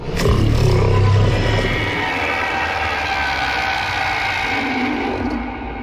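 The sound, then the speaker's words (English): A deep, sustained Thargoid alien roar issued from the HIP 22460 system, loud, with a grinding, rumbling texture and layered droning tones that hold steady for several seconds before easing slightly at the end. “There was a roar of triumph, of pain, or perhaps a summons, issued from HIP 22460 when the Thargoids gained their victory there.”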